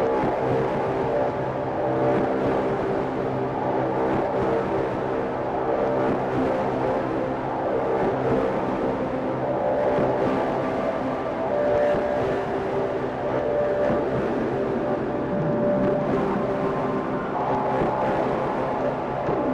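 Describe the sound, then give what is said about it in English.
Four synthesizer filters (the Wasp, the Angle Grinder, the SVF and the Ericasense DIY Multimode VCF), all in bandpass mode, drone continuously. Their dense, buzzing tones wobble and churn under diode chaos modulation, with a rough engine-like rumble. The sound holds steady in loudness throughout, with no talking. “They are all in bandpass mode. Let's get some modulation going with some diode chaos.”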